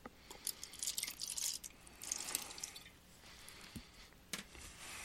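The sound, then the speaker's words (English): A little bum wine, the 17.5, glugs and splashes into a glass for a couple of seconds, fairly quiet, then tapers off into a few faint drips with no one speaking. “All right, so let's pour out a little of the 17.5.”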